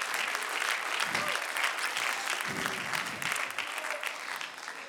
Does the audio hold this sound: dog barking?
no